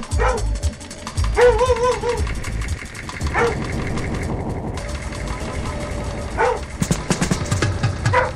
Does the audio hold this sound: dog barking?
yes